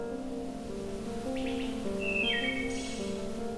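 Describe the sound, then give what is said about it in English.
A wood thrush sings a couple of short, fluty phrases ending in higher ringing notes, fairly clear, over a steady low musical drone that runs throughout, in Bacchus Woods, an older-growth Carolinian forest in Norfolk County, southwestern Ontario, Canada. “Songs of species such as this wood thrush can be heard echoing through this natural auditorium throughout spring and summer, far away from the cities and busy highways.”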